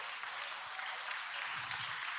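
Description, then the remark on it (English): A church audience applauds for mothers and women of the church with a steady wash of hand claps, many hands blending into continuous, somewhat muted clapping that holds level throughout, with no voices standing out. “That's all your mama get is a hand clap like that.”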